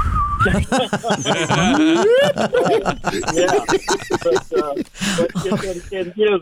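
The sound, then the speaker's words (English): A goofy clown whistle toots and slides upward in pitch a few times, fairly loud, tangled up with bursts of snickering laughter. “Yeah, but it's one of those clown whistles.”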